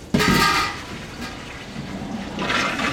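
Fryer oil being dumped out of a food truck fryer before filtering: a sudden loud gush of pouring liquid that settles into a steady rushing, splashing flow, swelling again toward the end, with no voices.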